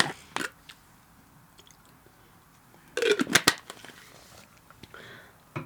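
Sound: sipping hot water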